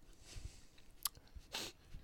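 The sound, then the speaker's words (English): Soft, wet chewing of cheese with a few sharp crunchy clicks and a louder burst of mouth noise, quiet overall with no talking. “As you're stuffing yourself with monster cheese.”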